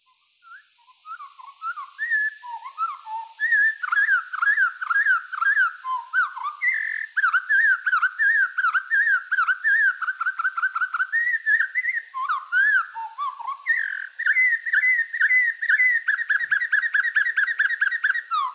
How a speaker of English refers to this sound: Winter Wren Song, one quarter normal speed.